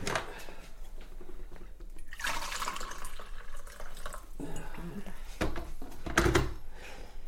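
Tea is poured into a cup in a steady trickling stream lasting about a second, surrounded by scattered clinks and drips and a couple of sharper knocks near the end.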